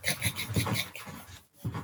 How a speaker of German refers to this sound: Jetzt einfach mal für 3 Sekunden Augen zu und kritzeln. Einfach irgendwas kritzeln.